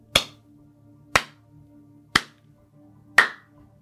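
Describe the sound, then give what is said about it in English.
Four sharp, loud claps ring out at an even pace, about one second apart, each a crisp burst that fades quickly over a faint, steady low hum. No one speaks. “And that's when, like, you hear a kind of what sounds like clapping at one point.”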